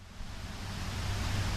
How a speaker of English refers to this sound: I visited her upstate at her home, and we sat in the backyard near a waterfall. That's the sound that you will hear.